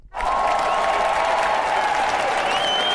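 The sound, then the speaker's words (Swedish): A sudden burst of a loud crowd applause sound effect, a dense steady wash of many hands clapping that holds at full strength for about three seconds, with a faint thin tone running through it. “Här kommer en applåd till dem.”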